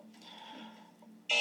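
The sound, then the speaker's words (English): A buzzer goes off: a steady, fairly quiet droning tone holds for about a second, then a much louder, harsher blast cuts in abruptly at the end. No one speaks. “Yeah, I don't, as a buzzer goes off there, but I don't love it either.”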